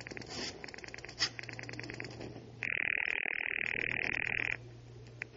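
A telephone rings once, loud, a steady buzzing ring lasting about two seconds, as a man places a call from a den, set against a quiet background of faint, rapid chirping pulses.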